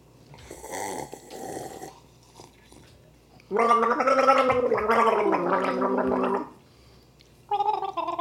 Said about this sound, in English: I mean, I think we could also gargle goodbye. I think that would be great. Yeah. And then do the outro music? I think we're overthinking this. Well, yeah, so here, I'm going to have a little sip.